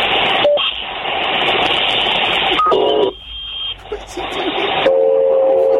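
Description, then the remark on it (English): A harsh, continuous digital screech of a ZX Spectrum computer loading data from tape, with raspy static bursts and steady whining tones. It is loud, cutting off briefly near the middle before resuming. “Is he loading his spectrum?”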